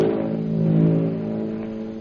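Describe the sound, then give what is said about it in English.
A propeller plane circles overhead in the darkness at night, its engine making a steady, low, buzzing hum that swells slightly in loudness and then eases off over two seconds, with no voices. “Overhead, a plane circles in the darkness.”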